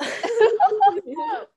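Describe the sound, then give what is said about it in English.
A long, drawn-out burp lasting about a second and a half: low and voiced, with a croaky, wavering tone before it cuts off abruptly. “I need a burp.”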